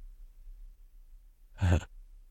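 A single short, explosive sneeze bursts out sharply after a quiet stretch with faint low hum, then fades back to near silence.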